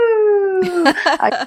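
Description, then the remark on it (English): A voice imitates howling wind with a long, steady, slowly falling hoot lasting almost a second, then breaks into a brief, busy jumble of louder vocal sounds. “So for that, I could tell you anytime the wind blew, I could tell you all of the whoo.”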